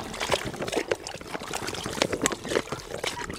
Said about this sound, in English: It's a stew, and the dogs love it. Mixing the meat.